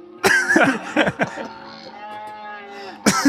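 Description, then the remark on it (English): A person does a fairly loud cow impression: a few short, choppy vocal bursts, then a long drawn-out moo that trails off before one more brief burst. “So, speaking of cattle.”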